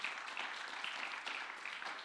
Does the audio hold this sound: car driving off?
no